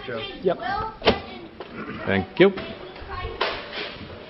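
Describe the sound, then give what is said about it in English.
A door is pushed shut with a couple of short, dull knocks amid voices and room noise; the thuds are moderately loud. “Just close the door.”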